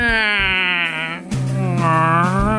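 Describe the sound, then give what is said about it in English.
A voice imitates the eerie creaking of cedar trees rubbing together with two long, wavering moans. The first is drawn out and slightly bending in pitch, and a lower, groaning second follows after a short break. “The trees, the cedar trees, these magnificent cedar trees are rubbing against each other, and it makes these ungodly croaks eerie. And screams.”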